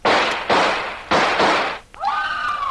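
Four loud, sharp revolver shots ring out in quick succession, each with a noisy crackling tail, followed by a high, wavering scream.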